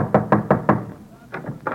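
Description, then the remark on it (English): Someone raps on a house door: four quick, evenly spaced knocks, a brief pause, then three more, fairly loud with no voices. “Knock on the door.”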